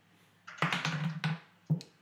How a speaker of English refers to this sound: Dice fell off the table.